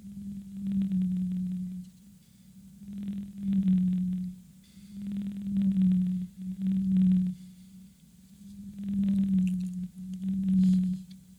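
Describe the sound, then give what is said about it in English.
Deep, droning tonal moans from a blue whale, repeating in long pulses roughly every two seconds, with a steady low hum and faint high-frequency hiss between calls. “That is the Baleen Patera musculus, which means blue whale.”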